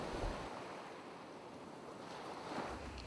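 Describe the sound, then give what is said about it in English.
Steady ocean surf washes continuously onto the shore, a broad rushing hiss with soft swells of louder breaking water near the start and end. No voices are present. “I want you to close your eyes, imagine the cool waves, and enjoy your listen.”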